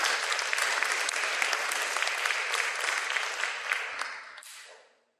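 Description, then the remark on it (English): An audience breaks into sustained applause, a dense wash of clapping that holds steady for about four seconds before thinning out and fading away to silence. “So please give a round of applause, folks.”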